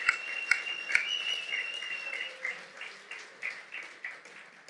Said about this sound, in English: Round of applause for Cairns, hey?